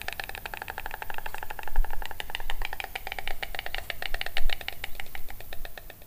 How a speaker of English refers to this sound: White storks are normally pretty much silent, but that changes during the breeding season. I enjoyed watching one stork sitting in the nest and then greeting its returning partner with loud, enthusiastic bill clapping.